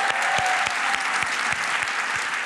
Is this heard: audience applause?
yes